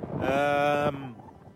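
Wind blows across the deck of the sailboat Cushla McCree, starting with a loud, moaning, tonal howl for under a second, then easing into a softer, steady rushing noise.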